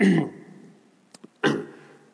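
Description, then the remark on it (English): A person clears their throat with two rough, raspy bursts about a second and a half apart. Faint clicks fall between them, and there is no talking. “Bad time to have to clear your throat during COVID.”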